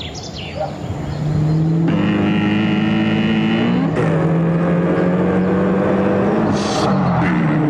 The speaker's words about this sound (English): The Heritage Distilling Brown Sugar Bourbon ad. There's just a car driving towards a mountain.